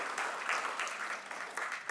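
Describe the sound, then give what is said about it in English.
An audience applauds the team working behind the scenes, with steady, dense clapping that holds at a fairly even, moderate level for the full two seconds, with no voices above it. “Round of applause for the team making it happen back there.”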